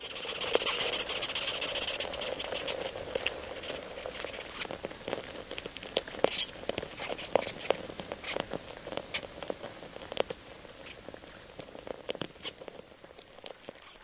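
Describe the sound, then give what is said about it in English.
Tetramorium ants stridulate in a great mass at the base of a tree, picked up by a tiny contact mic placed in the middle of the mass: a dense, continuous crackling chatter with rapid tiny clicks and faint squeaks over a low buzzing hum, steady, with no voices. “I once placed a tiny contact mic in the middle of one of those masses and listened as they stridulated, squeaking and chattering mysteriously.”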